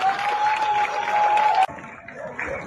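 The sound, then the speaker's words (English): A dense wash of many people clapping outdoors at 8 o'clock at night in a UK city to thank healthcare workers fighting coronavirus, with a long shrill whistle over it, then the sound cuts abruptly to quieter, more scattered applause and crowd noise. “All across the UK, people are applauding healthcare workers, helping in the fight against coronavirus.”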